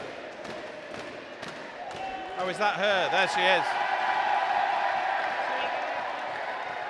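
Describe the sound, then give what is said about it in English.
A crowd roar for Liz Truss swells midway and holds as a broad, sustained wash of cheering and clapping beneath people speaking. “OK, this is the Liz Truss roar we can hear behind.”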